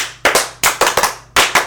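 A small group claps for their number one fan in a quick, uneven burst, sharp loud slaps landing in clusters with brief gaps between them over a couple of seconds, with no voices audible.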